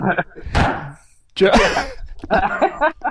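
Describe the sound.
Two sharp wooden thunks of a gavel being slammed strike about a second apart, loud and percussive, with voices talking before and after.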